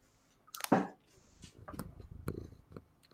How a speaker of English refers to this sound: I heard a purr. There you go. That's good enough. That's as much as you're getting from a cat.